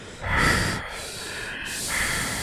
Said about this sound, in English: I'll boost the compressor up so you can hear his heavy breathing.